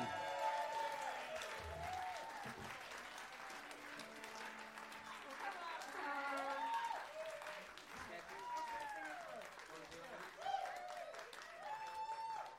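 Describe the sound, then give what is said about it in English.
An audience applauds the medal winners of a competition for about thirteen seconds, dense overlapping claps at an even level, with scattered voices and murmurs mixed into the clapping. “Round of applause, please, for those.”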